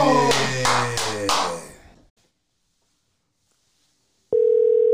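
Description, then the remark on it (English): A bright, layered musical sting with rhythmic hits fades out into silence, then a steady telephone dial tone starts abruptly and holds as a phone call connects, clear and fairly loud. “Let's get right into the phone call.”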